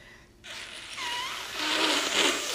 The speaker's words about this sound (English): I'm just going to blow my nose right now.